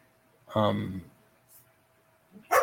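A single bark from the speaker's dog rings out, a short harmonic yelp followed by quiet, with a brief faint noise near the end.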